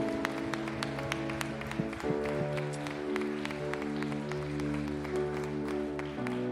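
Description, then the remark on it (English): A church audience claps hands steadily, giving the Lord a hand clap for a salvation that morning, over sustained organ or keyboard chords, the sharp, overlapping claps forming a continuous, moderately loud patter for several seconds. “Come on, church, let's put our hands together and give the Lord a hand clap for this salvation this morning.”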